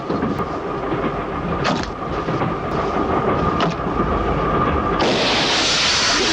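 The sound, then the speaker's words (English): A train rumbles and clatters steadily along the rails, loud, with occasional metallic knocks, before a sudden bright hissing rush joins in near the end, in a train fight scene from a James Bond film where tear gas goes off. No one speaks. “That was the first in a series of train battles that Bond would have over the years.”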